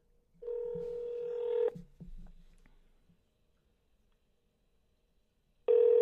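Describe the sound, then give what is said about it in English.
Electronic phone tones as a dropped cell phone call to someone in California is redialed: a steady tone holds for about a second, a few soft clicks and taps follow, then silence before the tone sounds again, clear. “Let's see if we can get her back on the line.”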